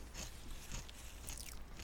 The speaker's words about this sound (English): All right, I'm going to chew. Okay. I'm still chewing, by the way. Keep chewing, please, by all means. Don't stop. Okay, crunchy. Uh-huh. Out of a bag of some sort.